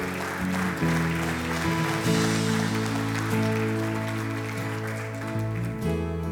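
An audience gives the Lord a clap offering in the morning, clapping steadily and continuously in a dense wash of applause layered over sustained keyboard or organ chords that hold underneath throughout, with no one speaking.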